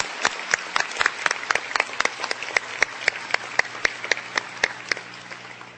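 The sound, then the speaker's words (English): An audience at a Princeton University commencement applauds steadily for several seconds to express appreciation, with a dense wash of hand claps punctuated by sharper, louder individual claps standing out in an irregular rhythm. “Please join me in applause to express our appreciation.”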